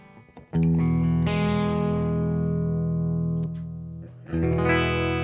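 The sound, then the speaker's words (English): A clean electric guitar on its bridge pickup, played through a Super Reverb amp with a little reverb, plays sustained chords with bright, twangy tone, strummed loudly, with a brief pause and a fresh strum near the end. “So here we have, this is a super reverb, pretty clean with nothing else on it except for a little bit of reverb, I think.”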